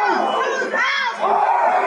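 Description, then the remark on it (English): A large crowd of Trump supporters pushing police officers back chants "our house" together in a loud, rhythmic football-style chant, many voices rising and falling in unison with a brief dip midway before surging back. “The fucked up thing is, gang, that's a football chant.”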